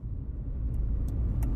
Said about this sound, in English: In the car now, on my way. Traffic's not bad, actually.